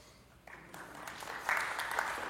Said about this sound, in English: A round of applause. Who's ever had to wait longer than 7 days to get a server?